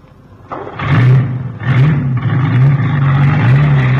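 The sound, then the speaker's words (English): A truck engine, started with a key, revs loudly, its pitch climbing and settling in repeated surges as a man from the London Zoo drives it away, a steady rumbling drone underneath throughout. No voices. “Hey, where's he going with the truck?”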